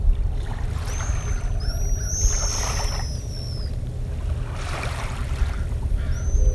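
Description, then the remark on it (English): High, thin whistling chirps from a nesting colony of pigeon guillemots on Anderson Island come in scattered bursts, some overlapping, over a steady low rumble of water and a droning engine. “We've got a nesting colony of pigeon guillemot talking here on Anderson Island.”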